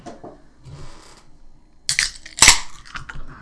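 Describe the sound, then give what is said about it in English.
A bottle of beer brewed with malted two-row barley and wheat and finished with blood orange peel, Texas honey and spices is cracked open: a scrape of the cap, then a sharp, bright pop, a short fizzy hiss and a few light clinks, with no one speaking. “Yeah, so let's do a little crack open.”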